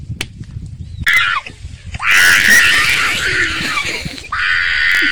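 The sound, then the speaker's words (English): A donkey screams loudly and harshly after being punched or slapped, a short cry followed by a long, strained, rasping bray and another burst, raw, with no talking over it. “Bro, that's not even, oh my God, that's not even a normal scream, bro. That nigga. He punched or slapped the shit out of that damn donkey, bro.”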